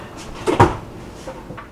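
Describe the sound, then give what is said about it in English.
A fridge door opens and thumps shut with a sharp clunk as oil and Parmesan cheese are put back in the fridge while making popcorn, followed by a couple of softer knocks, with no one talking. “I'm going to put the oil back, Parmesan cheese back in the fridge.”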